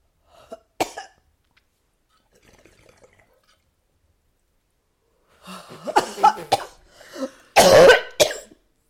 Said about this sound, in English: She really coughed in slow motion, y'all. You really coughed in slow motion.